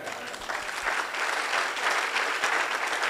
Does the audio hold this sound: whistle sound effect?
no